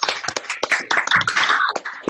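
A round of applause from several people clapping at once, a dense, steady patter of sharp claps with a thin, compressed quality, lasting a couple of seconds with no talking.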